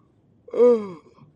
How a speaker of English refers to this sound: Sorry, y'all, I'm yawning, man. I don't know why I'm so tired.